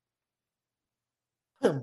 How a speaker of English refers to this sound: Sorry, I just had a cough attack.